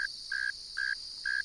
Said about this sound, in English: I slowly move closer, taking care not to disturb the singer. This is a northern mole cricket, a robust, inch-long burrowing species with enlarged front legs equipped with sharp claws adapted for digging. The male is singing from its burrow entrance.